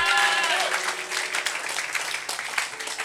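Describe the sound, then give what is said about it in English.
A church audience breaks into applause during a sermon, clapping for Jesus, many hands in a dense, steady patter, with a few raised voices and cheers rising over it at the start. “If that is the word of God, you can clap for Jesus.”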